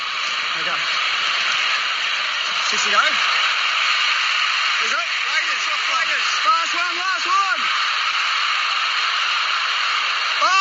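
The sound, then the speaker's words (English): A dense, static-like roar of a stadium crowd, muffled and tinny as if played through a phone, steady throughout, with several raised voices shouting over it midway. “There's going to sound like there's a lot of static, but it's actually the crowd noise in the background.”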